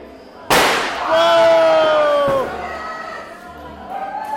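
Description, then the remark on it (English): A sudden, loud blast from a packet of gunpowder set in a bed of clay on a Saturday night, followed by a couple of seconds of shrill whistling and fizzing that slowly fades, with crowd noise and voices in the background. “The large waft of smoke is intense, and every now and then there's a minor explosion.”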